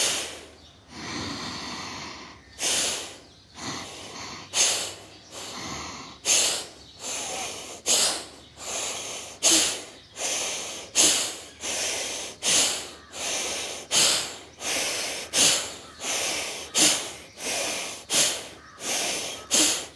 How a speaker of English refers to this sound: Now we'll slowly increase the speed of our breathing. Slowly, we start with a normal pace and increase the pace of the breathing.